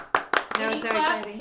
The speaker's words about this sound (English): Can you guys clap just a little bit farther away? Thank you.